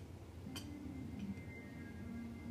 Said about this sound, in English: It's good group chat, bro. I know y'all heard everybody phone ding at the same time, cool. Group chat be going up all day, bro.